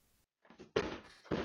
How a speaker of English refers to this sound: A person kicking and banging on the front door of their house. So violently, they're knocking the blinds off the back of our door that are held on by metal clips.